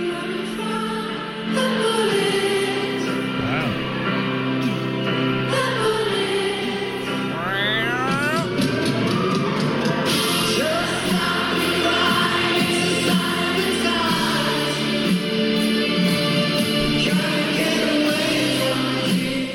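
A large concert crowd at Brixton Academy sings along live, a loud, dense wash of many voices carrying a melody over music, steady for the whole stretch with occasional rising cheers.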